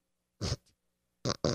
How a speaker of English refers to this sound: You need to blow your nose again?